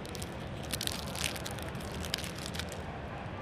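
A pack of Super Premium Picture Cards trading cards, with pictures produced with Kodak imaging technology, is torn open: a fairly quiet, continuous crinkly crackle of wrapper with a handful of sharper rips scattered through the middle, and no voices.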